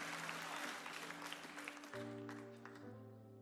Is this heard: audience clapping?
yes